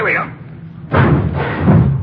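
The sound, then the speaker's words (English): A garage door swings open with a sudden heavy thud on a chilly day, followed by a loud rumbling and clatter that continues for about a second. “No, watch the door”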